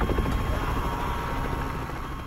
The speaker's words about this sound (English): It was easy to get people to comply, but sometimes take them on a helicopter ride over the ocean.